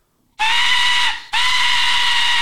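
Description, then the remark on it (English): An Aztec death whistle blown in two loud, shrill blasts, a short pause between them, each a harsh, rasping, scream-like wail with no voices. “He probably was like us with our Aztec death whistles.”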